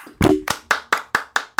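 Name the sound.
hands clapping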